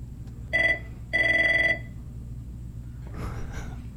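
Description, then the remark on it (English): A telephone at a rental car desk rings in two electronic bursts, a short trill followed by a longer one, clear over a low background hum, then a soft breathy rustle. “The phone is ringing nonstop.”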